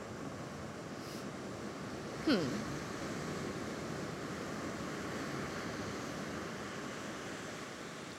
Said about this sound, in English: Like, I've seen the water kind of wash up maybe 2 feet where my towel is.